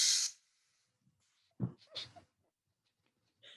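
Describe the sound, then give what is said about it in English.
A voice imitates the emoji with steam hissing out of a nose: a sharp breathy hiss, then a couple of short snorting puffs, and a final brief hiss, fairly loud with no words spoken. “The one with the steam coming out the nose? It's like...”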